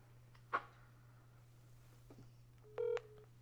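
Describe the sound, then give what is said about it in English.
A short electronic phone tone beeps once, clear, after a brief click, as a phone call comes in; a steady low hum runs underneath and no one speaks. “Shit, I'm sorry, man. I'm getting a phone call. You mind holding?”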